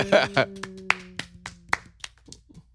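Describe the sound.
Seven or so sharp hand claps in an uneven, loose rhythm, given to thank someone off camera, fading slightly toward the end, after a brief burst of voice at the start and over a low steady hum.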